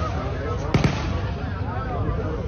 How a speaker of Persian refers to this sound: صدای شلیک گلوله ها که هر لحظه نزدیکتر می شود نشان دهنده وضعیتی جدی تر از پرتاب راکت است